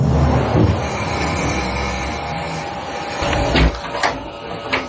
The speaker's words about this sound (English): You're going to hear the closet door open, and then they're talking about a glass breaking, and you can see the glass, which I'll describe to you when the clip ends. Listen.